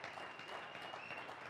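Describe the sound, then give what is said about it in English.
An audience breaks into steady applause, a dense wash of many hands clapping at an even loudness with no talking over it. “Now, come on, you ought to be clapping right there.”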